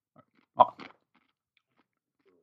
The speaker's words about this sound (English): Love the crunch.